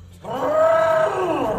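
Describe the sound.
A person from California, on stage with an arm raised as a trunk, imitates an elephant's trumpet with a loud, strained vocal blare lasting over a second, a steady mid-pitched wail that wavers slightly before trailing off, with no talking.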